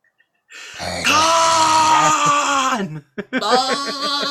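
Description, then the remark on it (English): A person does a loud goat-bleat impression: a long, wavering nasal cry, a brief break, then a shorter bleat with a quick, shaky tremolo. “Sorry, that was the goat. That was the goat version.”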